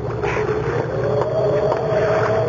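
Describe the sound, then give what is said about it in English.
A small boat rocking on water, with a steady wash of water noise and a low rumble running continuously and fairly loud throughout, no voices. “I'll go into the boat and get her.”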